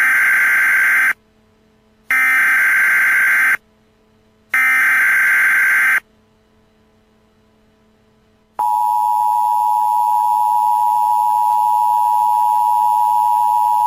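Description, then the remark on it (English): A US government emergency alert blares from a phone: three loud, raspy electronic bursts separated by short gaps, a brief silence, then a steady, piercing two-tone alarm that holds at full volume. No one speaks. “What is happening? Is your phone doing this?”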